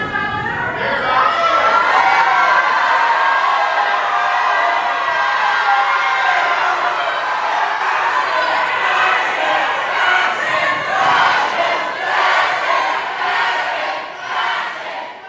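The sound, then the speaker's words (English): A large crowd in the galleries of the House chants and shouts continuously after Representative Pearson's vote, including shouts of "fascists". Many voices overlap in a loud, sustained roar with rhythmic swells of collective yelling throughout. “And a lot of chants, a lot of shouts of fascists.”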